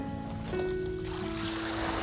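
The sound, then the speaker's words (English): Very gentle waves lap softly and steadily at the shoreline of a beach on a mild, colourless day, the water almost waveless with a smooth surface like a lake, a low continuous wash with no distinct breakers, and a faint tonal hum in the background. No voices. “Down at the beach. Can you hear? There's almost no waves today. Nothing. Listen.”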